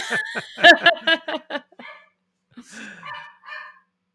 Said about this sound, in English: My dog is going to bark. I'm going to close the door. We're still going to hear her a little bit.